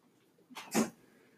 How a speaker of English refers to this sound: But we all heard it. That was so weird. And it stopped as soon as we stopped playing. Right. It is your dog. Yeah. It's Fury. What are you doing, Fury?